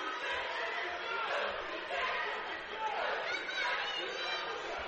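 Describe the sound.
Steady, dense crowd chatter from people filling the gym stands at a basketball game involving Central State, a broad murmur of many overlapping voices with occasional brighter calls rising above it, continuous and fairly loud throughout.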